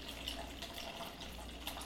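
A steady stream of water runs from a dispenser into a cup, a soft continuous hiss and trickle with no one speaking.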